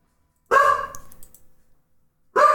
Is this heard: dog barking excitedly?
yes